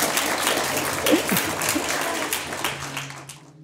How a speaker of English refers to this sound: Well, thank you, Matt Kean. I think he deserves a big round of applause.